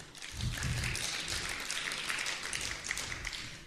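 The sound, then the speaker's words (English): An audience breaks into applause for a performer's acting, a dense, steady wash of many hands clapping that holds at an even level for a few seconds, with no voices. “You can applaud if you like.”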